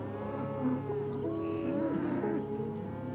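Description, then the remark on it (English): Cattle mooing in long, low, drawn-out calls, several overlapping voices from a cattle herd in Rogers, steady and fairly loud with no talking. “on the third weekend of April of 2014, Andrew visited his folks in Rogers and tended to his cattle herd while there.”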